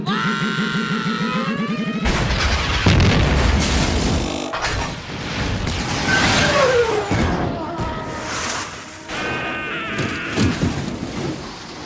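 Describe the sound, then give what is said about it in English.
Pod racer engines from the pod racing scene in Star Wars: The Phantom Menace roar past in a loud, continuous blast: a whining, rising engine hum gives way to heavy rumbling booms and repeated whooshing passes that sweep down in pitch. The pods have ships' engines strapped to a little car. “And the pods themselves have the engines of ships strapped to a little car.”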